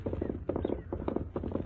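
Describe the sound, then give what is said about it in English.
Horse hooves clip-clop in a quick, steady rhythm of repeated thudding beats as Tonto rides his horse hard at a fast pace, with no voices over it. “Tonto's pushing his horse pretty hard.”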